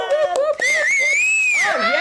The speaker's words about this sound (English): Jesus, sorry about that. That went up the Richter scale, that. Honestly, not everyone gets a clap and a whoop, …. And to be honest, you're the first guest who's ever whistled themselves onto the podcast.